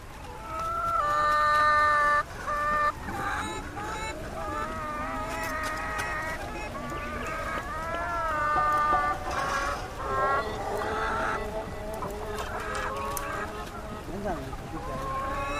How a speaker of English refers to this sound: Their cargo consisted of chickens in stacked cages, and the chickens were making the most unearthly, unchicken-like mewling sounds.